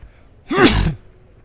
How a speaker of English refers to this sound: And oh no, I gotta sneeze.